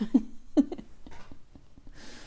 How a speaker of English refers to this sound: For the sound in the background, just to let everyone know, Mr. Spaghetti is currently snoring.